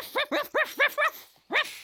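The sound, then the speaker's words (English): A dog barks six times in quick succession: five evenly spaced, sharp barks, a brief pause, then one more. Clear, with no one talking. “Hey, my dog. Come back, boy.”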